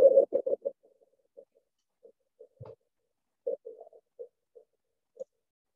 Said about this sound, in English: So let's click on that and see what happens. It takes us to a Morse code page, and I'm going to play it, but it may be difficult for you to hear.